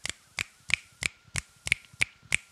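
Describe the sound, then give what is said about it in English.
Crisp finger snaps repeat in a steady, even rhythm, about eight sharp clicks roughly a third of a second apart, a few landing as quick doubles, with no talking. “And since Hen's not here to interrupt me and make fun of me for doing a poem, I'm going to snap for us.”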